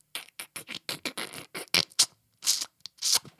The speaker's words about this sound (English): Go ahead and eat that dog biscuit.